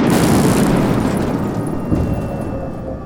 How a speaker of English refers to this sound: That didn't sound good. The ship's engines have failed. They didn't just fail, it's the storm.